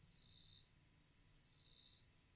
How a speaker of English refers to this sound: Do you, if you just listen for a second, do you hear something? I mean, I still hear crickets.